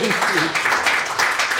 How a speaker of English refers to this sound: So a big round of applause to our guests.